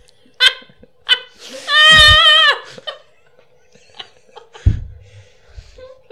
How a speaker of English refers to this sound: That was just a scream. That was the weirdest sound I've ever heard in a while. It was like a wind up and then release.